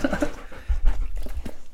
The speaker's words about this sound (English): Yep, sorry guys, just one second, I've got him being climbed on by a dog. Sorry, so you can stay there, if he calms down. He's not going to calm down.